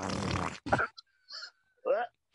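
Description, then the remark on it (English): A voice imitates a wet, sputtering fart with the mouth, a broad buzzy burst followed by a few short squelchy bursts and a gurgling, warbling finish, fairly loud. “No, it's bad because like you fart and it sounds normal, and then all of a sudden the very end sounds like a duck drinking water, and you're like, oh shit.”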